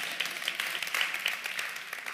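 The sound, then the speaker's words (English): A woman in the audience claps her hands steadily, a dense run of sharp, overlapping claps blending into light applause, with no talking over it. “Come on, she's clapping.”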